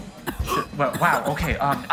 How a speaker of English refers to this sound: … chokes on an ice cube and coughs.